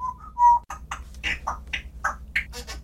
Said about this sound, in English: That's my parrot in the background.